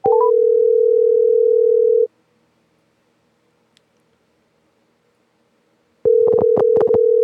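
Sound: telephone call ringing out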